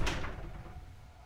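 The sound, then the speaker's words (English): A boathouse door opens with a quick clunk and brief scrape, followed by a low, fading rumble as it settles, with no voices present. “I'll open the boathouse door and, like, kind of give Loon a look of, like, be ready for anything.”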